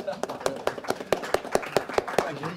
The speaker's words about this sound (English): Let's welcome him with applause.